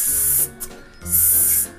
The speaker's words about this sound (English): You pull out the cola can and flip open the top. The soda can sprays you lightly in the face.